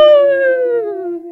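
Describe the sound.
A person imitates a wolf howl, a single loud, sustained vocal tone that slowly slides downward in pitch over about a second, with no other sounds around it.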